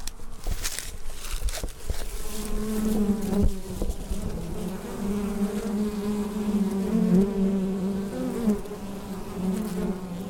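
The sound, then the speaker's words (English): A dense, steady hum of many honeybee foragers buzzing close to the microphone at the entrance of a hive, with individual bees droning past and overlapping tones rising and falling throughout, no voices present. “So if you put the microphone right up to where the foragers are coming in on the left right there, uh-huh, we'd be able to hear them.”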